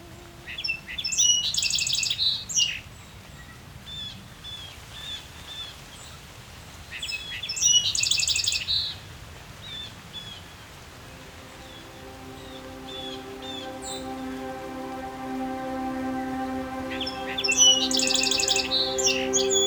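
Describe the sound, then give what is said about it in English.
A song sparrow, a streaky brown native sparrow of North America, sings three bright, jumbled bursts of trills and notes, separated by pauses, over a quiet outdoor background. A steady tonal hum rises in the second half. “The song sparrow is one of the most well-known native sparrows of North America.”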